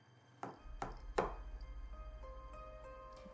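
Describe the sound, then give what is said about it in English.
Three soft knocks on the door to a nurse's quarters, evenly spaced, each a dull thunk, over a low steady hum and faint tonal background. “And then you hear three little knocks on the door to the nurse's quarters.”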